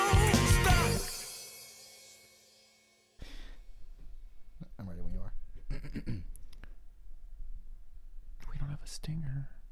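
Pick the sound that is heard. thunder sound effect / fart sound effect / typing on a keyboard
typing on a keyboard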